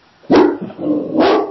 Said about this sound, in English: Can I be passive with my large dog that's barking at other dogs? My dog is very protective of our corner lot. When he sees another dog, he says, I must tell that dog who's in charge, right?